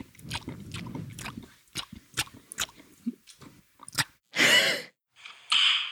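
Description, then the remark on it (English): A voice imitates the wet squelch of ointment for achy knees rubbed between hands: a run of sticky, smacking mouth clicks and slurps, ending in two louder hissing, squishy bursts. “And you know, putting ointment on your achy knees mm-hmm. can often sound much like a dog licking its asshole.”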